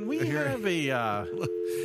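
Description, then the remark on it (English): A steady, unbroken telephone tone hums at a constant pitch throughout, with a voice-like sound rising and falling over it, as the Evergreen Chapel phone line is out of service. “Not in service at this time. Well, apparently the Evergreen Chapel phone isn't working here.”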